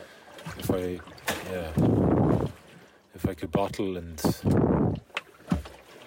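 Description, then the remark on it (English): Water sloshes loudly against a small ocean rowing boat in two rushing surges in quick succession, while a man talks in between them. “Generally I sleep really well on this on ocean rowing boats.”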